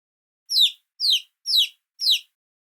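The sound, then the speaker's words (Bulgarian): A chick squeaks four times in quick, even succession as it flaps its little wings, each call a shrill, high, downward-sliding peep, fairly loud with silence between and no voices. “Записка пилето и размаха крилца.”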